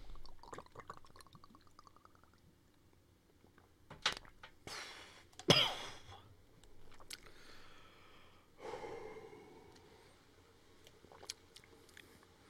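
A shot of Jameson whiskey is poured into a glass in a few short bursts with faint clinks and splashes, then a softer trickle before it goes quiet.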